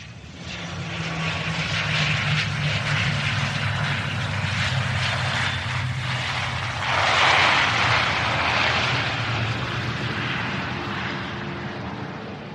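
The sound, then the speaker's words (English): An airplane engine roars steadily and continuously at Firenze Airport, a dense, droning rumble that swells briefly louder partway through before settling back. No voices are heard. “As Robert Langdon stepped off the plane in Firenze Airport”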